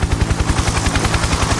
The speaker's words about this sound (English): Oh, helicopter. Do that again, sorry. Who is that coming out of the helicopter? Who is that coming out of the helicopter?